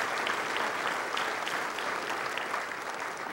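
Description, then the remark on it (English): An audience at First Baptist Church in Ozark claps steadily in appreciation of a video, a dense wash of many hands clapping at a fairly even volume throughout, with no voices standing out. “Let's give him a round of applause because it's beautiful.”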